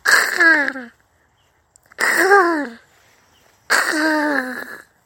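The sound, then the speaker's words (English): Someone imitates a crow with three loud, raspy caws, each under a second long, separated by short pauses, the harsh voiced calls bending slightly downward in pitch. “Before long, I heard a mystical cawing.”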